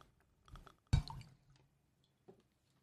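Black currant-flavored whiskey glugs and gurgles out of a gargoyle-shaped bottle spout into a glass with ice in a few short, bubbly bursts, one fuller splash standing out, all fairly soft with quiet pauses between and no talking.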